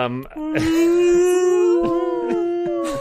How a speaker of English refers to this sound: So you hear the tormented whales and screams